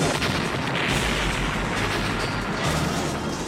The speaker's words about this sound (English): God, they're setting off bombs.